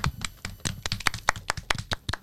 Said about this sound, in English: Clap, everybody. Clap. Let's go.